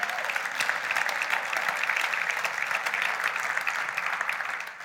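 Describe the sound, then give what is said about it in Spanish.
Loud, sustained applause from a crowd, given as praise to the Lord, a dense steady wash of clapping that holds at full strength for about five seconds before easing slightly at the end. “Podemos darle un aplauso fuerte al Señor.”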